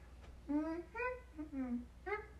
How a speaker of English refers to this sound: I don't think anybody wants to listen to you humming while you steer your spaceship.